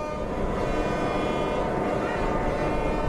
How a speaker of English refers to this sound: Berlin was brought to an absolute standstill yesterday by thousands of tractors and farm vehicles all converging at the iconic Brandenburg Gate.